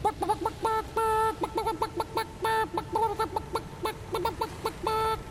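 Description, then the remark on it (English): A chicken clucks in a rapid, uneven run of short, nasal calls, fairly loud, with brief pauses between the bursts and no talking. “And back then, Morse code had to be clocked out by a chicken, which was the most advanced technology we had aboard these ships.”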